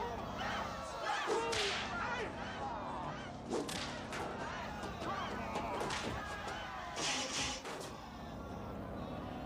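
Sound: whip cracking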